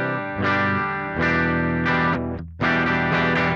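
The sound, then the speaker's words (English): An electric guitar played through an X Pandora multi-effects unit, its saturation toggle switches set for the clean tone, gives a clean, bright tone, strumming four sustained chords with short pauses between them, fairly loud with no talking. “The X Pandora had internal dip switches on version 1, and then in later versions it moved those dip switches externally, but you use the toggle switches here to affect how saturated the tone is, the overdrive or distortion. So here's the clean tone.”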